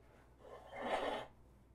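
Someone in a corner blows their nose once into a paper towel, a soft, breathy rush of air that swells and fades in under a second, faint, with no talking.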